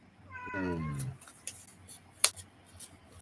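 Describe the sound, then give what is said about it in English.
A single drawn-out meow from a male cat, loud, rising then sliding downward over about a second, followed by a few faint clicks and rustles in otherwise quiet surroundings. “Oh, that cat is. He is. He just wants to be nuts.”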